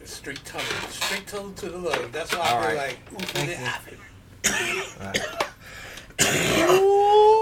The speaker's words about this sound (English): That's not me coughing. That's baby lungs. That's baby lungs.